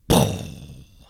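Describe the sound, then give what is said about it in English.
A voice imitates car engine combustion with one loud, explosive roaring burst that starts abruptly and fades away over about a second, heard alone. “But yeah, there's a lot of explosions that are happening because the gas is combustible and then it gets lit by the thing and then that's what makes the engine go.”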